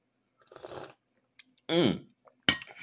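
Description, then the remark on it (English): A soft slurping sip of Bigelow Perfect Peach honey tea, then a voiced, falling "ahh" of satisfaction, followed by a sharp, bright clink of a ceramic cup being set down. “So I'm going to sip on that because I like that word mellifluous, since I can sip on my yielding or producing honey tea.”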